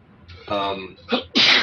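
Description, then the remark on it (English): A single loud sneeze: a short breathy inhale building up, a brief pause, then an explosive burst of noisy air at the end. “Bless you.”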